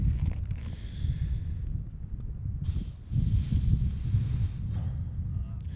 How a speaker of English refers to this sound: Like the wind that you can tell you're hearing through the microphone, they're going to hear that.